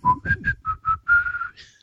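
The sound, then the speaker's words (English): A person whistles a quick series of short, separate tones, each at a slightly different pitch, then holds a longer note, mimicking the beeps of a touch-tone phone keypad. Clear, no talking. “What's that supposed to be, like touch tone, phone tone?”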